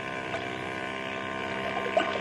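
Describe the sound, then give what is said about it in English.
A steady, droning boat engine hums continuously with a layered mechanical tone, even in loudness, with faint water wash underneath and no one speaking. “Ben, look through these night glasses and see if that's the same boat.”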